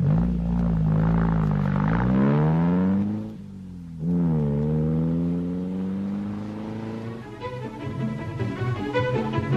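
A car engine revs up loudly as the car is turned around, its pitch climbing twice with a brief drop between as it shifts gear, then settles into a steady lower drone as the car drives off.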